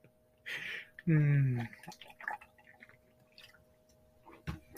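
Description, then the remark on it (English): A swig of water: a short burst of wet gulping and liquid sloshing, followed by a few quieter mouth and swallowing noises. “Hey, speaking of that, I'm gonna take another swig. My mouth got dry talking about all that stuff.”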